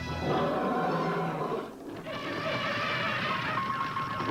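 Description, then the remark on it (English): A loud, drawn-out cartoon lion roar from the king of the jungle in a Post Fruity Pebbles cereal commercial, with a rough, brassy growl that dips briefly midway, then surges back and holds strong to the end. “The king of the jungle. I need your fruity pebbles or I can't roar.”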